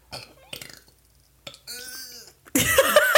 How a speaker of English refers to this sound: God, we're so bad about belching on this program. No, it's fine. I'll cut it out.